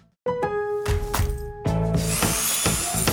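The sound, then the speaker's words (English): A power drill whirs with a steady motor whine and a few quick revs, then bites in and grinds louder and rougher until the end. “With items like Craftsman 20-volt drills starting at $59.”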